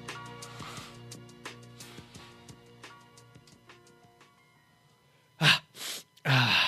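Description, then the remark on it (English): Someone blows their nose in three loud, rough bursts near the end, the last one longest. Before that comes a quieter stretch of faint, steady tonal background sound with scattered soft clicks. It happens at a media block in Houston on a cold day. “Excuse me as I blow my nose.”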